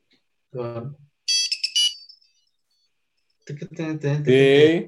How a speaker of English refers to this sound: But see, this phone is an iPhone, yeah? Have you heard my ringtone for this phone?